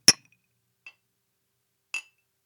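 Glasses clink together in a toast, one bright strong clink followed by two fainter, scattered taps, sharp and ringing against otherwise silence.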